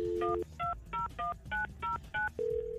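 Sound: telephone dialing tones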